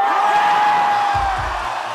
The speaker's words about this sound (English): I've here elected to play for you the live version of the song, with all of its foot stomping and audience cheering.